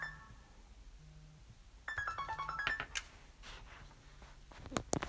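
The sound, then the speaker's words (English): A phone ringtone for an incoming call starts up partway through, playing a bright, stepped electronic melody, followed by a few sharp clicks and handling noises against a quiet background. “I had a phone call there”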